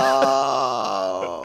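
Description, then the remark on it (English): A voice lets out a mock crying wail, a sustained, wavering moan with a slight downward sag in pitch, fairly loud and unbroken for about a second and a half. “Oh, crying.”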